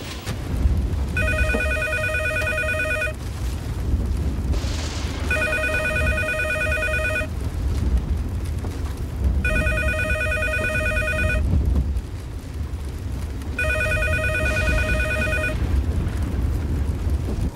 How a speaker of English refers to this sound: Come on, Mom, answer the phone, would you please?